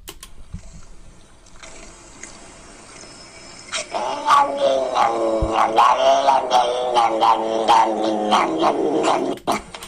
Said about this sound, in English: So that's what he was talking about, though, that low, growly sound that cats sometimes make.